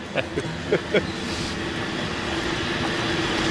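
A cable car at Mason and Pacific rumbles along its line with a steady low mechanical hum, a few sharp rhythmic clanks in the first second, then a continuous grinding drone.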